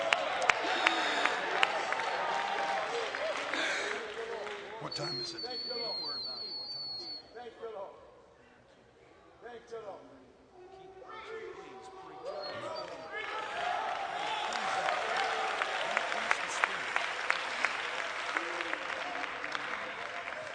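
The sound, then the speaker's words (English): An audience in the house of God claps and shouts joyfully in worship unto the Lord, a loud, dense roar of applause and voices that eases off briefly midway, then swells back to full strength. “Walk into this place shouting joyfully unto the Lord. Fill the house with a shout of worship.”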